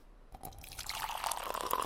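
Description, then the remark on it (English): Hot water pours steadily into a glass beaker, a thin splashing trickle that rises in pitch as it fills, with a few drippy plinks at the start. Fairly quiet, no voices. “The hot water was the first one.”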